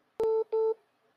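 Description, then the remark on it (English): Two short, steady electronic telephone tones sound in quick succession after a sharp click as a troubled phone line reconnects a call, clear and fairly loud with no talking. “We're having a little trouble catching the phone connection here, but we got him.”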